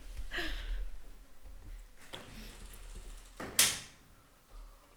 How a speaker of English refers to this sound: Oh my God, there's stupid flies. I'm just gonna shut that door.